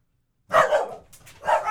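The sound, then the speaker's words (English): Dogs barking in a quick burst: a couple of sharp barks, a brief pause, then another bark, loud with no talking. “And the dogs hated that story. Yeah, the dogs hated it.”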